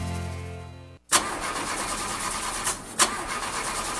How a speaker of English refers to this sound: Car not starting? Yeah, it just started doing this, and I don't know who to trust to take care of it.